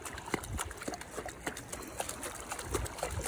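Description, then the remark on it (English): Continuous water sounds with irregular splashes and sloshing as a puppy named Rotor Blade paddles through water during puppy swimmer training, steady and moderately loud throughout with no clear talking. “So today is puppy swimmer training. We're gonna drop in the water.”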